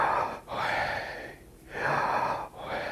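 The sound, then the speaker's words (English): Slow, deep breaths drawn in and pushed out, each a soft airy rush separated by brief pauses, with no talking, as a person concentrates on their breathing. “It's that moment where I'm breathing and I'm concentrating on my breath, knowing with each breath, I'm claiming the name of Yahweh.”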